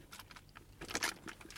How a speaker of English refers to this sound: You're going to slip into your theater of the mind, and I'm going to sip on this Subway soda here.